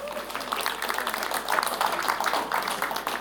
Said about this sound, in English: Wasn't that band outstanding? Give them a clap.